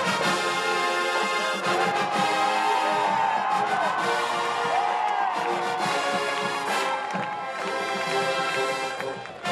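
A marching band's percussion section pounds out a steady beat as the band members march onto the field, while the crowd in the stands claps to the beat and cheers, the whole mix staying loud and dense throughout with rising, wavering tones over the rhythm.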